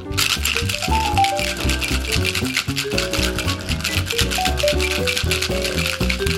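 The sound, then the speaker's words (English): Ice rattles hard inside a cocktail shaker holding a piña colada of Coco Lopez cream of coconut, lime juice and pineapple juice, shaken in a fast, steady rhythm, loud and continuous for about six seconds, with music playing underneath. “I'm going to add some ice and give this a really vigorous and thorough shake.”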